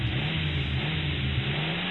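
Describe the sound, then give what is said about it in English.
A car engine revs hard and steadily as a stolen car pulls away, a loud, continuous mid-pitched roar with a rising harmonic whine, with no voices. “That selfish bastard just stole our car.”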